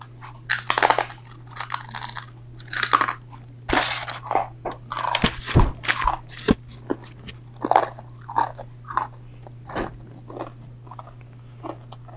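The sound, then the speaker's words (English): Loud crunching as a dry, brittle Melba toast cracker is bitten and chewed, with sharp cracks and a steady rhythm of crisp munching bursts over a low background hum. “It's like some sort of cracker, but I think it's like super, super crunchy, it looks like.”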